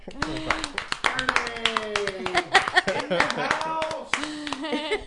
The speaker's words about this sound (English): Should we clap?